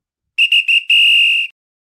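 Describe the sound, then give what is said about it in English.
A referee's whistle blows three quick short blasts followed by one long, sustained shrill blast, loud, with no talking. “All right, we're down to our final whistle.”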